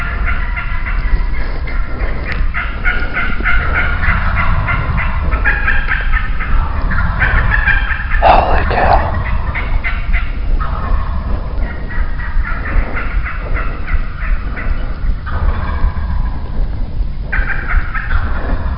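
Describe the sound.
Wild turkeys gobble loudly and repeatedly during a hunt, rapid rattling calls overlapping one another across the whole stretch, with a short excited exclamation from a person partway through.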